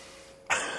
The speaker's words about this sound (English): Oh, do you want more time to think? You can keep breathing